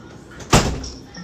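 A door shuts once with a solid thud that rings briefly and fades, against a quiet background.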